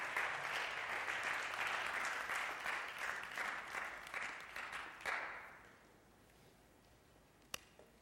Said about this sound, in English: Let's give these guys a big applause. Yeah, absolutely.